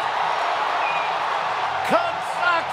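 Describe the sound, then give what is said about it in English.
A huge stadium crowd roars in steady, unbroken cheering after Christopher Morel's game-winning three-run home run for the Cubs, with a couple of sharp rising whoops and whistles cutting through the din near the end. “Can you believe it? Listen to this crowd.”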